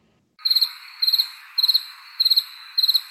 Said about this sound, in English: Yeah, I told you I'd put crickets, so there you go.